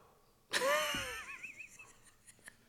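A man's single harsh cough bursts out, trailing into a high, wavering wheezy whistle that slowly fades, followed by quiet with a few faint clicks.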